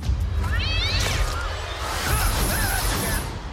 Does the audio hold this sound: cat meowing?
yes